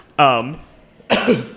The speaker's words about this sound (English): Pardon me, it's the plague. It's my kennel cough.